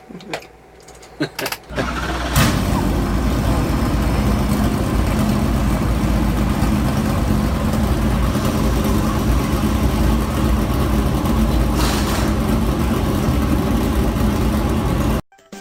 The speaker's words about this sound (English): Drivers and all anteaters, start your engines!